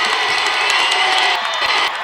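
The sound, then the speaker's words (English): A loud, sustained roar from a packed North Surrey crowd cheering at a basketball game, a dense wall of shouting voices that holds steady throughout with no break. “North Surrey crowd getting into it. You can hear him behind us, that's for sure.”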